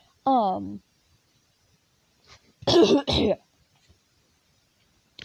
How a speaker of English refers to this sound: I love coughing.